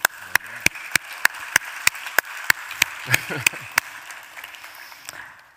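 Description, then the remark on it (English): Applause as a steady run of about a dozen sharp, evenly spaced claps at a quick rhythm. A brief voice sounds faintly underneath midway, and the clapping stops before the end. “And I just think that deserves an applause.”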